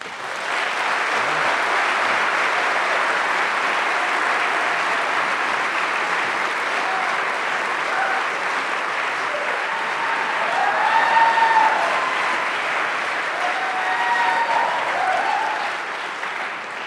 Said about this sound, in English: Everyone listening on their radio is just wondering what the rapturous and thunderous applause was all about. I like to milk that for everything I can.